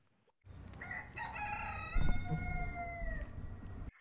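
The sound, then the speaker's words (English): Chickens cluck loudly, several overlapping drawn-out calls rising over a low farmyard rumble for a few seconds, with no talking. “But they were loudly clucking.”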